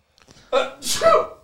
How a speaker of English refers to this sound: I got to sneeze.